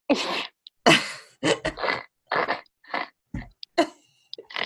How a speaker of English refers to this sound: I've never been a snorter. I can't even, like, snort when I try.